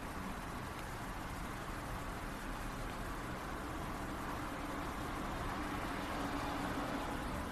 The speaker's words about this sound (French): Puis au milieu de la respiration, il y a quand même des sons qui apparaissent, la voix du prof. La circulation.